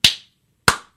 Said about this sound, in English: The sound of one hand clapping, but that would be silence. That was just me. Like, it's bogus applause because it doesn't mean anything.